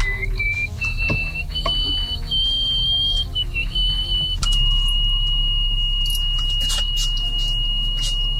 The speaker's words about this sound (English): she would just be doing this whistle that sounds kind of like the kind of whistle you'd hear in like a serial killer movie, you know, when there's somebody approaching that you didn't want to be approaching.